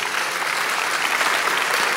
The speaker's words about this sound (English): The Lord bless the hand that is clapping.